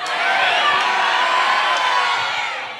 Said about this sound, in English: Just yell your names because we're going to release this. We have a lot of listeners around the world, and they need to know who you are as individuals. Personally. So on the count of three, yell your full name. 1, 2, 3.